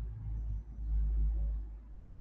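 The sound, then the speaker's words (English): Low, steady traffic rumble of cars passing outside, heard through open windows, swelling and fading gently over a couple of seconds, fairly quiet with no voices. “Okay, now I hear the sounds of cars, a wind chime, windows are open.”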